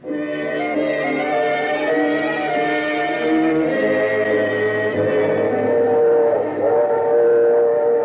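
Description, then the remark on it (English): A passenger train runs steadily, its sustained chord-like whistle sounding over a continuous rumble, loud for the whole stretch with no voices. “The package was light in the drawing room, and the train was comfortable.”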